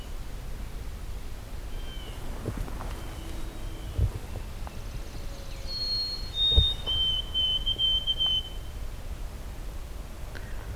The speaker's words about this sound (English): Another white-throated sparrow. It's really loud. I don't know why I can't see him.